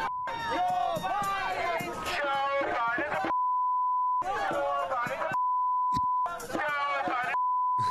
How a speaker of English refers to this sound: The whole thing's just beeped.